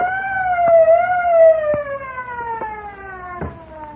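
A truck's auto alarm system, set off after someone broke open the lock, blares a loud, continuous siren-like tone that drifts slowly downward in pitch, with a few sharp clicks and knocks underneath and no one speaking.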